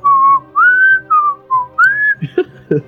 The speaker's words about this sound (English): Just start whistling away